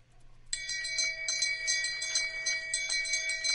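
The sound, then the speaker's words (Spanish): A small toy shame bell, a Game of Thrones novelty, rings continuously with a bright, tinny metallic jangle starting half a second in, rapid repeated strikes blending into a sustained shimmer, fairly loud, with no talking. “es, puede estar horas haciendo esto, pero es una campana del shame, porque no sé cómo la introdujeron en español al final, para Juego de Tronos, en fin.”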